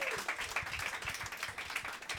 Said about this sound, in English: Round of applause for the brave people coming to the front, ladies and gentlemen.